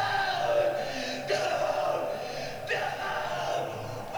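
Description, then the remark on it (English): A man's anguished scream from a film, the scream from when Dr. Gordon is sawing off his leg, isolated and looped to play at the end so it repeats without pause: a strained, harmonic howl that restarts every second or so, loud and continuous for the whole stretch. “Yeah, they isolated it and looped it to play at the end as nice.”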